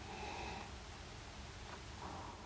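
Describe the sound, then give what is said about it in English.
Quiet nasal sniffing as someone smells wine they have just poured and swirled in a glass: a longer breathy inhale, then a couple of shorter sniffs, with no talking. “it smells kind of peppery to me.”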